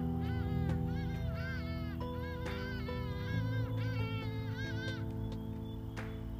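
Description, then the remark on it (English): Hadeda ibises call in loud, raucous bursts of harsh honking cries, repeated several times in quick succession over a steady low background hum, with no one talking. “those birds are known as the Hardy Dar”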